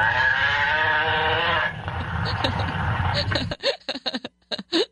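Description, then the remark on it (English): A loud cow moo sound effect with a drawn-out, slightly strained tone, fading into rumbling noise before people start talking over it in short bursts. “Do we have what the cow does? Oh, I'm sorry. Of course we do. The cow says...”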